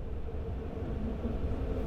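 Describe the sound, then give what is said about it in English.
Steady low rumble of a moving train leaving Glasgow, heard from inside a carriage, a continuous dense drone with faint rhythmic rattling and no voices. “So I'm just on the train now, leaving Glasgow, and I'm just sort of reflecting on my time here.”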